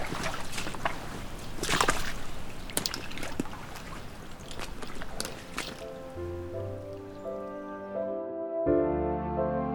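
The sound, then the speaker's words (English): Heavy sloshing and splashing as someone in waders wades through deep floodwater for several seconds, the swishes irregular like slow steps, before fading into quieter steady tones. “Now I'm in the flooded part. Now I'm in hip wader territory.”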